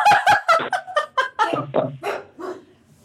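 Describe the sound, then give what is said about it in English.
A dog lets out a rapid series of short yips and barks, about a dozen in quick succession, tapering off in pitch and loudness toward the end. “Oh, look, we even made my dog laugh.”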